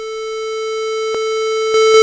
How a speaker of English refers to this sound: The oscilloscope wavered frantically as the static grew louder. In an instant the noise stopped and was replaced by a high-pitched whistle.